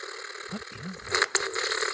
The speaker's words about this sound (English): What are you, are you picking up that static? What is that? Yes, but it's not just in the headphones. It's in the room.